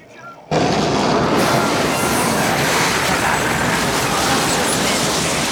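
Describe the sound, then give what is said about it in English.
A tornado roars in abruptly after a brief quiet moment, a loud, steady, rumbling growl heavy in the low end that sounds much like a freight train and never lets up, very pronounced just before the tornado hits a barn. “A very pronounced growl.”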